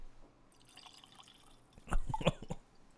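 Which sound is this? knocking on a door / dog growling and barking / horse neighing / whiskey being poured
whiskey being poured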